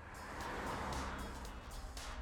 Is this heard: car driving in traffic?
yes